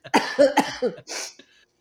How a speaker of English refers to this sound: Excuse me. I'm coughing. I'm choking on my own cookie.